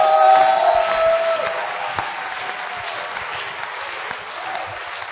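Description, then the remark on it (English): A church audience claps and cheers loudly for the Lord during a sermon, with a bright whistle or shout at the start, then the dense applause gradually eases off over several seconds. “Give the Lord a wonderful clap of him.”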